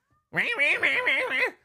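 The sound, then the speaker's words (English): A cat lets out one long, drawn-out meow with a wavering, warbling pitch, loud, with nothing else audible around it. “What are you meowing about?”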